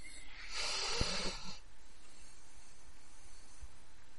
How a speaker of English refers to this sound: Chaps, it's breathing. What? I'm just... Shut up and listen, it's breathing. Listen.